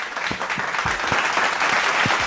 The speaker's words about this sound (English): So are they clapping for themselves or? Yeah. Oh wow. Hey guys. I told them to give themselves a hand for being the best studio audience ever.